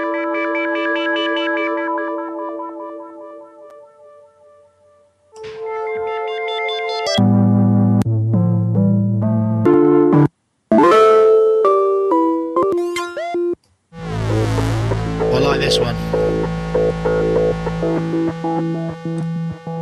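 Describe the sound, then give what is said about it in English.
Electronic tones from a Vimona Performer four-voice polyphonic synthesizer playing chords and shifting sequences, moving from sustained layered notes into rapid pulsing patterns, with echo effects and a dense, buzzy final section. Loud, with no talking. “Let me just find a bit where it changes into some polyphonic tones, because it is actually a four voice as well.”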